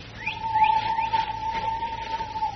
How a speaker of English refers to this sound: Hey, wait. Did you hear that? So what? Another bird woke up. There wasn't any bird I ever heard here in Malaya.